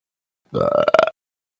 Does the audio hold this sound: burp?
yes